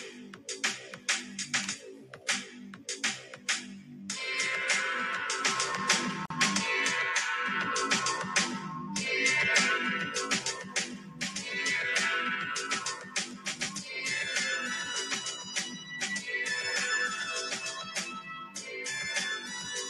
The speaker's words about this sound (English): This is actually not bad. I got my phone up to the mic. It's playing the theme music.